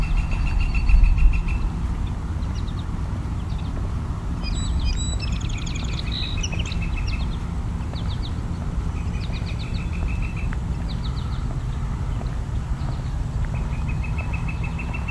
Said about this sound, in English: A field sparrow, there are a handful of them here.